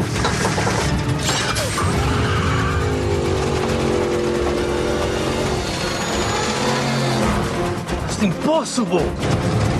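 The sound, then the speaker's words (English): A car engine roars and surges as the driver hits the turbo, its pitch sweeping upward, loud and continuous with sharp bangs near the end as the engine catches fire, with voices mixed in. “And the funniest part is when the engine actually catches on fire, after he hits the turbo, because he's got to catch up with the guy.”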